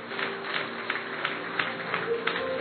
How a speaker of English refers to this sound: Clap your hands like you mean it.